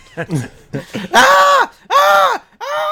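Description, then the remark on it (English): A voice imitates the scream of Spurious, who is trying to wriggle free of a horrible thing: short guttural vocal noises give way to three loud, harsh, sustained screams, each rising and falling in pitch, separated by brief pauses. “He is screaming the entire time.”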